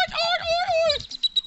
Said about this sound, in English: Was that an eagle? Oh, there you go. Okay, I like it. I like it. That's the sound my... It's a bald eagle.